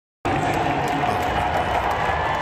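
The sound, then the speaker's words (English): Applause from a small crowd at a Nationals ballpark, as the former Speaker of the House goes to the mound, starts abruptly and holds steady: a dense patter of clapping at moderate loudness, with no one speaking over it. “Big crowd. Jeez. Was it 30 people there?”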